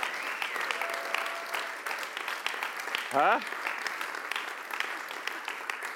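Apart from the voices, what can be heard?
audience clapping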